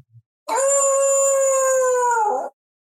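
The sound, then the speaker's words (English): A single long dog howl sound effect rings out for about two seconds, loud and steady with a slight waver before it trails off, preceded by a tiny click. “And I like this one so much, Coach, that I think I'm going to make it my Chiefs dog of the week.”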